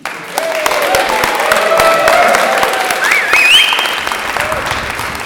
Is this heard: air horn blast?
no